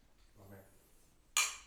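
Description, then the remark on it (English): Two thick wine glasses knock together in one sharp, bright clink that rings briefly and fades, after a soft low murmur of a voice. “Whoa, you guys almost broke those glasses.”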